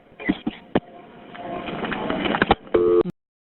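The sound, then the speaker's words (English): Muffled, chaotic noise on a caller's line to a dispatcher, with clicks and bursts, then a brief steady electronic tone as the caller disconnects, ending abruptly in silence. “That caller disconnected there.”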